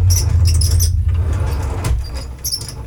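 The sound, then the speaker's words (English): A keyboard stand on a desk, in need of oiling, squeaks in thin, high-pitched, mouse-like chirps, one cluster at the start and another at the end, over a steady low rumble. “I gotta oil the thing on my keyboard is on my desk. You hear that horrible noise it's making?”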